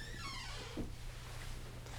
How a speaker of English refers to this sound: you got one creaky door, man. Yeah. You gotta oil that, like just said, oil that thing.